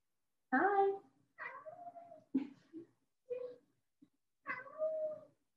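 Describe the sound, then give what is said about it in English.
A cat meows repeatedly, several drawn-out, wavering cries with short pauses between them, loud and clear with no other sounds around. “My cat wants to make a cameo. Really said, like, what are you doing?”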